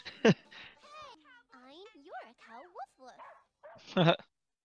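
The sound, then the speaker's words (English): A person imitates a barking dog, with two sharp, loud woof-like barks at the start and end and rising, whiny yelping vocal sounds in between. “Cow cow woof woof. Woof woof.”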